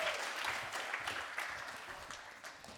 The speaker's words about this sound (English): Can you guys give Talon and Matt a round of applause? Thank you, guys.